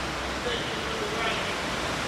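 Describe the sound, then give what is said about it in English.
Rain falls in a steady, even hiss with no breaks or distinct drops, a constant wash of sound filling the whole two seconds. “And thank you for the rain.”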